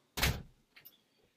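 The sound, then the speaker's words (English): A door shuts with a solid, fairly loud thud that quickly fades, followed by a softer rattle or click a moment later, with no talking. “Did you just drop something? I closed my door.”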